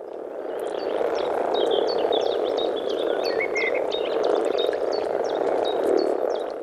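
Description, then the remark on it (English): A dense chorus of common frogs giving throaty, rumbling mating calls to females joining them in a pool of water on a bog, a continuous low purring churn from many animals at once, with faint high chirps scattered above it. “This throaty rumbling might not get the hearts of female listeners beating any faster, but if you're a common frog, it's like a siren call.”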